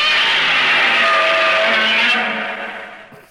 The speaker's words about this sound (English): Do you want to play the roar real quick just so we have it? Yeah, yeah. So if anybody doesn't remember, you've probably heard this before.